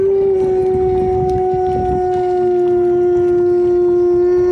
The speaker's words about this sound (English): This Alaskan Malamute is a real-life foghorn. Good boy.